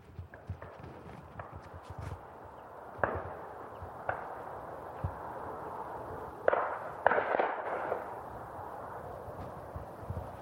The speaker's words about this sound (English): That's the crack of shotguns as the shooting party. They seem to have surrounded a copse, so I don't know whether they're bagging a few pigeons from there. Maybe some pheasants. Certainly a lot of shooting.